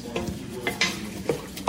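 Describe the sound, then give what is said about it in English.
Wet, squelchy stirring of macaroni mixed with a tomato mixture in a pot, with several soft scraping swishes and faint clinks in a loose rhythm over a low sizzling background. “And mixing it up.”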